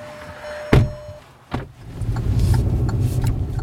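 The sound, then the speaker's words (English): Two sharp thuds like car doors shutting, then a car engine rumbles into a steady, fairly loud drone as the car sets off up a mountain road above Tucson in the Sonoran Desert, with no voices. “pile into our car and head up the mountain.”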